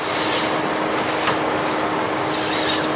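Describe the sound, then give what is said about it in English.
Steady, loud grinding and scraping of a timber harvester on a national forest lifting a fully grown jack pine, cutting it to length, debarking and delimbing it, a harsh rasping wash of wood being stripped and cut, with brighter hissing surges at the start and end. No one speaks. “the machine picks up a fully grown jack pine out of the ground like a toothpick.”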